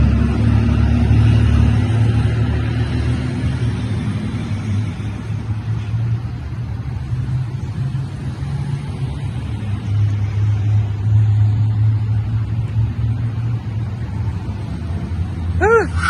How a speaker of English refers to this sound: Tesla has been on the butt end of many headlines recently, and I just can't understand why, with such innovative features such as Smart Summon, where a car will automatically navigate a parking lot to drive to you without anybody inside it.